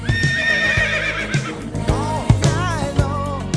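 A horse whinnies loudly, its shrill, wavering neighs rising and falling over a few seconds, with some dull thumps and shuffling underneath.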